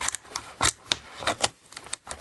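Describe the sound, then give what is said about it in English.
A dog crunching popcorn: a quick, uneven series of sharp, crisp crackles and snaps, fairly loud, with brief pauses between bites and no talking. “This is a dog eating popcorn.”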